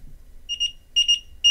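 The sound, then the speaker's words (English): Short, high-pitched electronic beeps sound in three quick bursts, each a rapid double or triple pulse, like an alarm clock chirping, clear and alone over a faint low rumble. “Beep short.”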